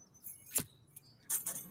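Keys jingle in two short metallic bursts, a quick shake followed by a longer rattle a moment later. The sound is fairly quiet and bright, with no voices.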